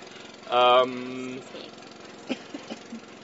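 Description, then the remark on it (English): A boat's engine gives a loud, droning tonal burst for about a second, then quickly fades beneath a steady low background rumble, with a few faint, brief sounds afterward. “Oh, there's a boat again.”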